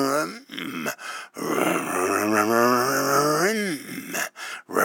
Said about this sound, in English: you can hear them shifting through the gears. I have to look up, when did the first automatic transmissions come out? I don't know. And, of course, even the automatic shifts, but not like that. You can literally hear it.